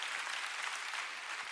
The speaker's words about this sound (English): Now together, let's bless the name of Jesus. Come on, the highest praise. Come on. Come on, clap like you're thankful.